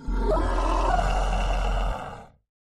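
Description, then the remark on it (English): A loud, frightening howl from a furry creature that was a man whose mouth and nose have grown and become covered with fur, one sustained guttural cry lasting about two seconds, rumbling, then trailing off into silence. No voices. “As the man stands fully, you notice his mouth and nose have inexplicably grown and is now covered with fur and releases a frightening howl that sends shivers down your spine.”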